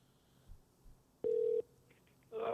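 Phone tones over a line: a loud, steady electronic beep, a short pause with faint blips, then another tone begins as the call rings through. No one speaks.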